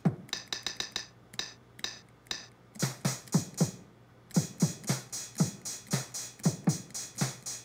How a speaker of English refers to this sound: And now, if I send things over channel 10, instead of acting as like a pitch-based MIDI keyboard, this is going to trigger drum sounds that, again, are in sort of preset places.